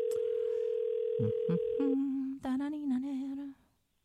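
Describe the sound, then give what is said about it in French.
A steady electronic ringing tone on an unanswered phone call holds for about two seconds, a couple of faint clicks underneath, then a voice starts talking over the line. “Sonne comme quelqu'un qui n'est pas là, ça.”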